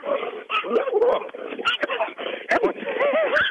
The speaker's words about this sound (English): Well, my dog was pooping back in my backyard up against my fence, and my neighbor's dog just tried to eat him. Sorry. It's all right. I had to go make a rescue.